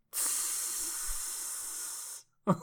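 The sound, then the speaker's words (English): A voice imitates a sizzling hiss, one steady breathy hiss held for about two seconds, then a brief vocal sound right after. Fairly loud, with no other sounds. “Sizzling.”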